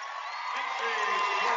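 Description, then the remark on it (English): A crowd at a basketball game bursts into applause from each side after an interception and score, mixed with cheers and scattered whoops, a dense, steady roar that holds at full strength and swells slightly through the short moment. “A round of applause goes up, I think, from each side.”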